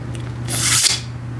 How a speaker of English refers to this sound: It was a CO2 gun. There was no discharge, just a sharp burst of air.